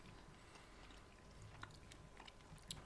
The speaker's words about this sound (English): It's a vegetarian-friendly crisp, so I doubt it. Real chorizo going in. Yeah. You keep chewing it. Then the flavour comes through.